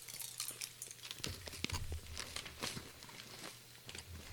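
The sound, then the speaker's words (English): A small plastic Skittles candy bag is torn open with a burst of crinkling and crackling, sharp rustles scattered across a few seconds, fairly quiet overall with a low hum underneath. “They're tear open the little bag.”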